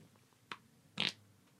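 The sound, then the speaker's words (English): A short, thin fart sound: a quick faint blip followed by a slightly louder, squeaky burst lasting a fraction of a second, heard on its own with no talking. “I bet you wish it was a better fart, don't you?”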